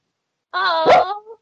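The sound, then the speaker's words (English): A dog whines in one drawn-out, high-pitched cry about a second long, with a sharper yelp-like catch in the middle before it trails off. “Hi, puppy.”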